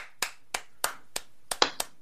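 Six or so sharp hand claps in a slow, steady rhythm, fairly loud, sounding like one or two people clapping rather than a full crowd, with no talking, given as a round of applause for a guest.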